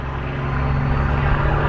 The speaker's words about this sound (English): That's a big truck. I'm gonna just wait a minute because I don't know if it's interacting with the mic.